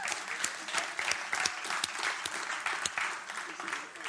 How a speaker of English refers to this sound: Should we give him an applause?